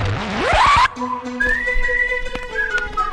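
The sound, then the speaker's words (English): A loud, breathy whistle blast sweeps sharply upward in pitch for under a second and cuts off abruptly, followed by softer sustained tones and a few sharp clicks. “I said louder. Blow my whistle, so watch.”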